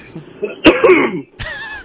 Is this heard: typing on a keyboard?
no